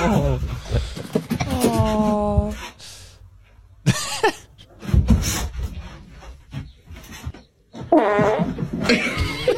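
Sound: fart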